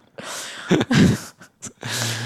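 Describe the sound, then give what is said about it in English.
A single forceful sneeze bursts out after a short sharp intake of breath, followed by a quick sniff and a moment of soft, breathy noise. “God yeah. bless you.”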